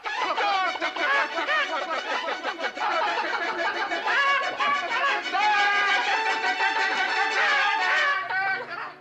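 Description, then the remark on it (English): A hen clucks and cackles in a busy, continuous stream of sharp, chattering calls, loud, running for about eight seconds before cutting off abruptly. “oh, it's probably a prize-winning chicken.”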